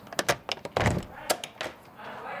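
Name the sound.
front door being opened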